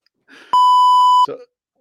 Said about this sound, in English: The people tomorrow are gonna be like, what is all that beeping? They didn't beep the rest of it. Why did they beep just the end?